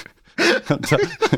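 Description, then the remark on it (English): A person makes a rough, voiced growl in imitation of a dog, starting after a brief quiet moment and continuing in a few loud bursts. “Did you just growl? Growl at me?”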